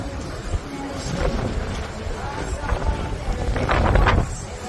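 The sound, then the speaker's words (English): Strong wind on deck 15 of a cruise ship, by the main pool, a steady low roar that buffets the microphone, swelling into heavier gusts toward the end, with a hiss of rain mixed in. “plenty of wind.”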